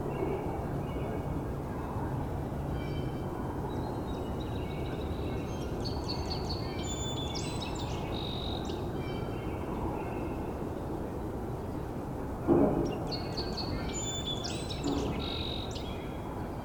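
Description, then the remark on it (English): Sandhill crane calls, growing quieter, come in two rolling bursts, fairly faint above a constant low rumble of background noise, with a brief knock near the end. “Sandhill crane is getting quieter again, so I don't know if they're looping back.”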